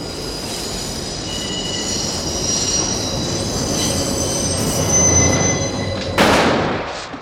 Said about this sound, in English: and we hear the whining screech of an elevated subway car going by outside the restaurant.